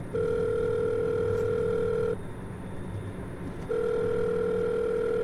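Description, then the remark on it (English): A phone ringback tone purrs through the line in two long, steady rings separated by a brief pause, with a low rumbling background hum underneath and no voices, as a caller driving at night phones to leave an anonymous tip. “When I wasn't too far from my destination, I grabbed my phone.”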